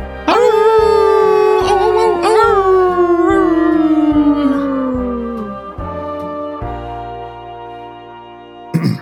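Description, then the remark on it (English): A long, loud wolf-like howl slowly slides downward in pitch, carried over a steady rhythmic musical backing, then fades out near the end. “We'll see you next time you feel like howling at the moon.”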